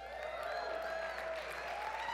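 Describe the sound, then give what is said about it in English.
An audience claps steadily for a couple of seconds during an announcement of someone's 90th birthday, a dense, even patter of many hands with a few voices calling out underneath. “Would you give, what are y'all clapping about?”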